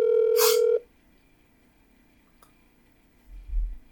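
A telephone being dialed: one loud, steady electronic tone lasting under a second, then quiet, a faint click, and a soft low thump near the end. No one speaks.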